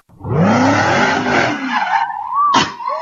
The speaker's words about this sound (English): Just last night, drivers lit things up in the brand new 6th Street Bridge. They were spinning their wheels, doing donuts, leaving their calling cards, a bunch of skid marks, and then there was the crash with the video posted to YouTube.